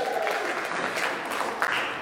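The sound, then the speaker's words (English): A church audience claps and cheers steadily to welcome those watching online through Facebook, a dense wash of applause with raised voices mixed in, holding loud and even for about two seconds. “Can we welcome everybody from, you guys just say, like, cheer or clap or say, you know, they'll hear you, you know, through that.”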